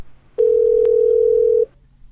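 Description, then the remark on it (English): A single steady electronic phone tone sounds once, loud and unbroken for just over a second, then cuts off abruptly. No voices are heard around it. “Ring, ring, ring, bitch.”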